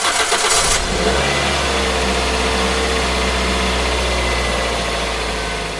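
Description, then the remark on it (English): A car engine cranks with a short, harsh burst as someone starts their car to drive to work, then catches and settles into a steady, loud rumble with some revving. No one speaks. “I got up, grabbed a quick shower, got dressed, walked and fed the dog, and then hopped in my car to get to work.”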